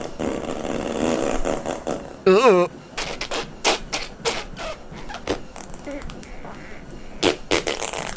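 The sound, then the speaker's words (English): A loud wet fart: a short warbling blast followed by a run of sputtering, crackly bursts that stop and start for several seconds. “I just have to angle my cheeks so I get the smoothest possible exit for the fart air.”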